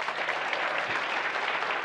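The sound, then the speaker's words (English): A room of people clapping together for a participant who has just answered a question about the prodigal son, a dense, steady wash of applause that holds at an even loudness for the full two seconds with no voices breaking through. “Give her a clap.”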